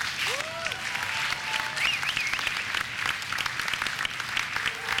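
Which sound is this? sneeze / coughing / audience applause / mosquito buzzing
audience applause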